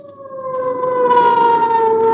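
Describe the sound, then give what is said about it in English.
A loud ambulance siren wails steadily as the ambulance speeds through darkened city streets, its pitch sliding slowly downward as the tone swells, with a harsh, piercing edge and no voices. “Or the wild shriek of a siren as an ambulance catapults through the city's darkened streets.”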